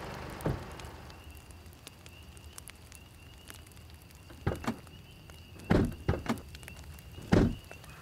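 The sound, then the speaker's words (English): Footsteps coming up a driveway: a handful of heavy, crunching steps in uneven pairs, growing louder toward the end, over a steady hissing background with no talking. “Hey, look, someone's coming up the driveway.”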